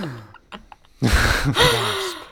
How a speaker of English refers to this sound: Oh, I like that we both went for a gasp